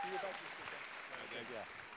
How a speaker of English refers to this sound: He did a great job. Give him a big Give him a big right round of applause.